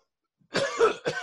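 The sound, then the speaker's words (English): A rough, raspy cough in three quick bursts, fairly loud, with a gravelly, phlegmy edge like a smoker's hack. No talking. “This cough, I try to tell people it's like a smoker's cough, and it's like, oh, right now it ain't flying.”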